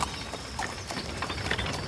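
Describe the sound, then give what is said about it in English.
Horses pull a carriage off the path through the woods, hooves clopping unevenly beside a steady rumble of wheels and rattling, creaking fittings, continuous. “Will the horses be able to take us through the woods?”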